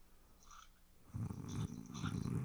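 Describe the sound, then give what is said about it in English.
Loud, close-up snoring of a woman with the microphone right in front of her face: after a quiet first second, a rattling, throaty rumble sets in and continues steadily to the end, with no talking. “We're getting some serious snoring here.”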